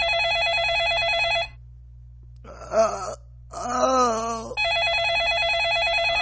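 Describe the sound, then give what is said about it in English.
A landline phone in a man's house rings with a steady, trilling electronic tone, stops while the injured man, unable to reach it, moans and wails, then starts ringing again, loud. “Phone in his house is ringing.”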